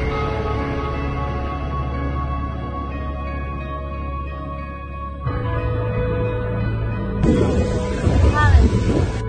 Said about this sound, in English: Everything's, it's windy,